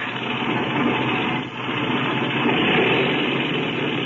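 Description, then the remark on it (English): A steady, loud airplane engine roar runs throughout as the engine is run up before takeoff, a continuous mechanical drone with a brief dip in the middle before surging back, like a propeller plane revving up. “Okay, clean out that engine while I climb into the front cockpit.”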